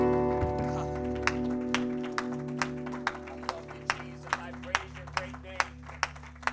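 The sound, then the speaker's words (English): A church audience claps in steady unison in praise to the Lord as they are seated, sharp regular beats growing more distinct over a held organ-like chord, with a murmur of voices underneath. “Can we give one more hand clap of praise unto the Lord as we're seated?”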